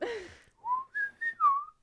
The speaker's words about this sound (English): Stop blowing in the microphone. I'm trying to whistle. Be nice to our listeners. Oh, wow. I cannot whistle. I can't do that. Can't do it.